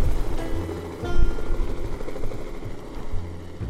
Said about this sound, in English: Helicopter. Off she goes.